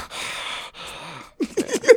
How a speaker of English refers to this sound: Just heavy panting.